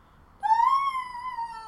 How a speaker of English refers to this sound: That was the sound effect of Shannon's scream, not Boone's. Could have been either.